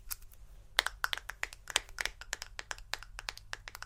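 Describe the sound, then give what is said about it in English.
Rapid, irregular tapping on a glass jar of face cream with a picture on the front: dozens of sharp clicks with a bright, slightly ringing tone, some strikes louder than others, continuing steadily with no voices. “I love the picture at the front. It's made out of glass also.”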